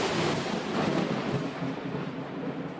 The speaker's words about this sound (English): Maybe a little bit of thunder, but no rain.